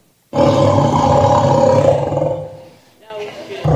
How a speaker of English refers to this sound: This is what happens. The tiger, as they're getting ready to pounce on their prey, it lets out this spine-chilling roar.